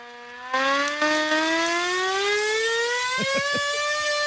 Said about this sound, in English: Here we go. We have a hand crank siren. I have no idea why we have that.